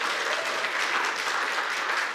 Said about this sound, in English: Can we clap for Tremont? It's a big deal.